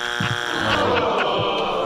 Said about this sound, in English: Yeah, I don't need to hear that. I just want the buzzer. The one that we are planning on hearing more of tonight is this one.